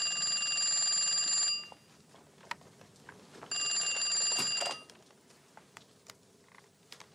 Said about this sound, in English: like when the phone rings.